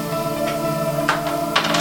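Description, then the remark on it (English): Small dice clatter and tumble across a hard tabletop in a few quick bursts of sharp clicks, over a steady low hum in the background. “you roll dice just fine. You just roll them all the way off the table.”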